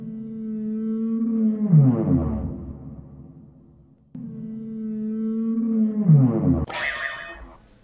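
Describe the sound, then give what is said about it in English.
Two long, low whale moans in a row, each a steady droning tone that bends and slides downward, the second ending in a brighter, raspier burst. No voices are present. “It's a whale moan.”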